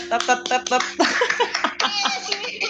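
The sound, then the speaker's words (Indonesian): A run of sharp hand claps from one person's hands at an uneven pace, several in quick succession, mixed with laughter and people talking over them. “Tepuk tangannya kayak banyak ya, kayak dua tangan.”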